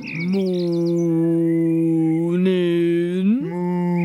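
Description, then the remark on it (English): A bird whistles in a brief high warbling trill at the start. A steady, buzzy, harmonic-rich tone holds underneath and swoops upward in pitch twice near the end. No one speaks. “Oh, he's at it again with that whistling.”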